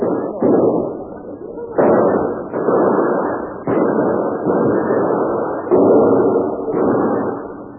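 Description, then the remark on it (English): Heavy gunfire in repeated loud, muffled volleys, each burst starting sharply and rumbling on for about a second before the next, continuing steadily with no voices. “Hold your fire.”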